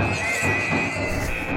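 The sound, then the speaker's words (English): Hogs on the loose squeal loudly and continuously in a shrill chorus, with a steady rough commotion of bodies crashing and scrambling as they try to break out, no voices present. “Hogs on the loose! We got hogs on the loose! They're constantly trying to break out!”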